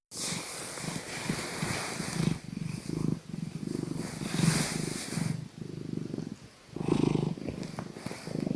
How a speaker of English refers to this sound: This is what a purring cat sounds like. This is my cat Dracula purring while I petted him.